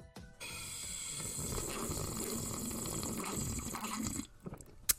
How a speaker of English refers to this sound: Ah, HODL Fuel. That's good. That tumbler that you got from HODL. Sounds like you almost got it all down your throat that time.